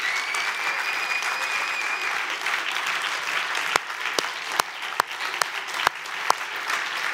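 A crowd at City Life breaks into sustained applause, a steady wash of many hands clapping, with several sharper individual claps standing out toward the end and no one speaking.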